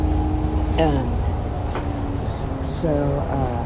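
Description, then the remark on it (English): Steady low engine rumble and road noise fill the inside of a moving northbound DASH Pico Union/Echo Park city bus as it approaches Alvarado Street and Beverly Boulevard. Brief tonal whines rise and fall as it shifts. The sound is continuous and fairly loud throughout. “Thank you, bus driver.”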